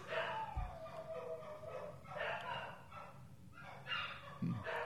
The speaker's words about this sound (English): I kind of hear your dogs. Yeah, there must be a siren wailing somewhere. They're just...